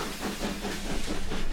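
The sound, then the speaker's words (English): A steam train hisses steadily, a broad rushing whoosh with a faint rhythmic chuffing pulse beneath it, growing slightly louder toward the end. No voices are heard. “So, following that exact advice, I found myself one sweltering day in the summer of 1947 in a cramped carriage on a train headed for Plymouth.”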